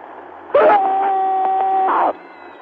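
A single loud, sustained scream from one person venting anger and stress, held at a steady high pitch for about a second and a half, then cut off abruptly against a quiet background with no talking.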